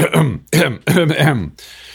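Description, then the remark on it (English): A voice imitates a man's nervous throat-clearing tic from public speaking and sermons, clearing the throat three times in quick succession, each a gravelly, voiced rasp, followed by a brief soft breathy trail. “He would clear his throat constantly when he spoke in public.”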